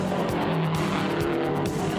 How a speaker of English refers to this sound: it looks like the checkered flag is going to be taken by car number 99 before Mike Nazareth in car number 83, a rookie making his first appearance at Indianapolis, gets his white flag.